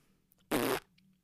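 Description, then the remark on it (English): A single loud, buzzy raspberry blown with the mouth to imitate a fart, lasting about a third of a second, with quiet room noise before and after. “And then he would mimic the fart the entire meal.”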